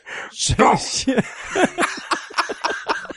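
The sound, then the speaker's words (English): A brief, buzzy raspberry made with the lips, a fart noise blown by mouth, followed by a string of short, rhythmic chuckles and voices. “You can't not laugh at a fart noise.”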